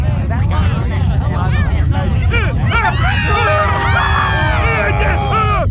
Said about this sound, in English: As the planet shook, the people of New York flew into a panic.